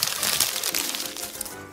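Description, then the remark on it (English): Paper crinkles and crackles in a quick, irregular burst of crisp rustling, steady for under two seconds before easing off slightly at the end, as a written story on paper is crumpled up to be thrown in the trash. “So he did what all defeated writers do, crumpled it up and threw it in the trash.”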